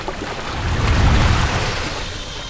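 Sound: rushing waterfall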